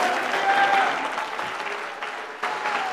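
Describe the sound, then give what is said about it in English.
A church audience claps hands together to thank God in a dense, sustained burst of applause, with scattered faint voices underneath and a brief swell near the end. “You ought to clap your hands and thank God that he can make a way when there seems to be no way.”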